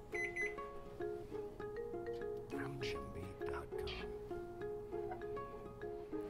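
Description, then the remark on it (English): A microwave oven heats regular RODI water for about 2 minutes, humming steadily while a series of electronic beeps sound from its keypad, with a voice murmuring briefly in the middle. “Let's put it in the microwave.”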